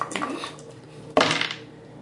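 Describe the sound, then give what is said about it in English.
Dice clatter and rattle across a hard surface in two bursts, a busy rolling patter that settles, then a sharper second throw that tumbles and fades out. “Give me three rolls if you're just gonna spray down the crowd.”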